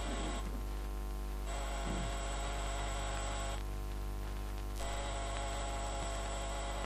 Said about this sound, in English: I got Dunn's address, waited till after the funeral, then I went to his apartment in Rose Bay, armed with skeleton keys. But just for the heck of it, I pressed the door buzzer.